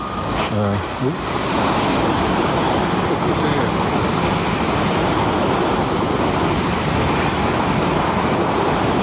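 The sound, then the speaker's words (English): A train thunders through a station without slowing, its loud, steady rushing roar filling the whole stretch from start to finish, unbroken. “It's not stopping at all. I'm glad I wasn't in the way.”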